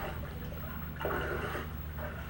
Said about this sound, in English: Are you playing with the water, splashing it? What do you think you are, skipping stones? Oh, good shot, good splash.